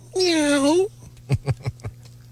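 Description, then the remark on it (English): A single drawn-out cat meow, fairly loud, followed by four quick soft thumps or taps in a short run. “No, I don't let the cat in the bedroom.”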